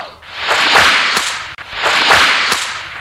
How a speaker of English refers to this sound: You will know it is time to turn the page when you hear the bullwhip crack like this.